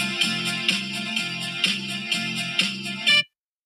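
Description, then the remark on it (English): A phone chime sounds as the phone turns off, a short, bright electronic melody of repeated notes in a steady rhythm for about three seconds, fairly loud, then cuts off abruptly into silence. “My phone turned off for some reason.”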